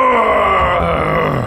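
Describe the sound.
A voice imitates the character Crow's dramatic pained cry when he gets hit, a single strained, groaning yell held steady for about a second and a half, loud and harsh with a slightly falling pitch, no other talk.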